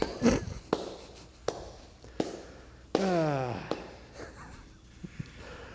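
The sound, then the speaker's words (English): A slow, deliberate hand clap repeats about five times at an even pace, each crack sharp and loud, while a voice speaks and groans between the claps. “I'm giving you the clap the way the New Day tried to give Saraya the clap.”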